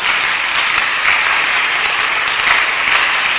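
An audience claps together in a dense, steady wash of applause that stays loud and even throughout, with no voices rising above it.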